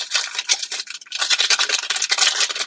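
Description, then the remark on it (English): Dried onion flakes pour into a pot of chili with a steady, dense rustling hiss, a bright crackly shower of tiny pieces that briefly thins before pouring on again, with no voices. “but ooh, here's the dried onions.”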